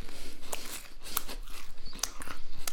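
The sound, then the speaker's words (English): Someone bites and crunches through a rice cake, a quick string of sharp, dry crackles in an uneven chewing rhythm, fairly loud with no talking over it. “It's not easy to eat it in a hurry.”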